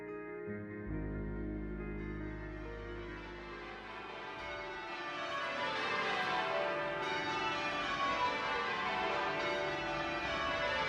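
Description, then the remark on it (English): Church bells ring out in a full, resonant peal, their overlapping strikes blending into a continuous wash of ringing tones that grows denser and louder as the bells keep swinging. “The bells that rang out across Allied nations after the First World War ended what for many had been a four-year silence enforced by regulation in some places and imposed by confiscation in others.”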